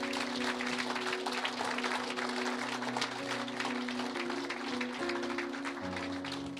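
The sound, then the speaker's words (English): An audience claps steadily and loudly for several seconds, a dense wash of hands, while sustained keyboard or organ chords hold underneath and shift a few times. “Everybody clap your hands for them.”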